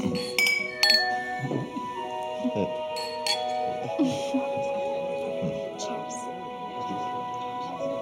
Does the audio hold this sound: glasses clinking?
yes